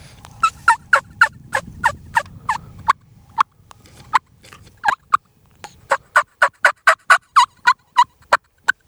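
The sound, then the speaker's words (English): A person softly imitates turkey calls under the breath with a closed mouth, a long run of short, evenly spaced yelps and clucks, fairly clear, over a low rumble during the first few seconds. “I call it the under your breath calling. That's where you're not opening your mouth.”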